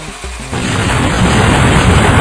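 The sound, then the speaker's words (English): After a brief low hum, a bus suddenly explodes with a loud blast that becomes a sustained, dense roar of rumbling noise that carries on without letting up, with no voices. “Oh no! The bus exploded!”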